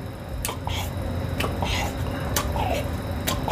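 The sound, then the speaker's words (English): Chewing of squeaky cheese curds, with sharp squeaky bites recurring about every second over a low, steady background, with no talking. “It's like, I see why cows do this. Chewing the cud?”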